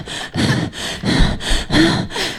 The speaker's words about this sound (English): There's your breathing. That's your breathing